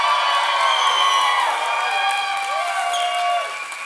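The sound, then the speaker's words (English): A large crowd screams and cheers loudly and continuously, high-pitched shrieks and whoops layered over a dense roar, with some applause mixed in, dipping slightly toward the end. “would you guys scream so loud they hear you on the other side there?”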